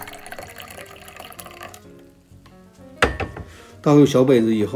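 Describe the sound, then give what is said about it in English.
Liquid pours in a steady trickle into small individual ceramic drinking glasses, each about the size of a double shot glass, for about two seconds, fading out before a person begins talking. “Pour these into your small individual drinking glasses. These are small ceramic glasses that are about the size of a double shot glass.”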